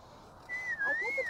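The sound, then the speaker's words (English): A single loud, high whistle imitates a fire truck siren, holding a steady tone, dipping briefly, then sliding back up in a slow wavering rise and fall. No talking. “But we heard the fire truck.”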